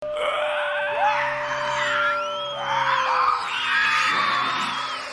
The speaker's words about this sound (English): I haven't seen a vampire film yet that has terrified me or gave me that dread feeling as 30 Days of Night. Now, do you guys remember the horrific blood-curdling sounds the vampires made in the film?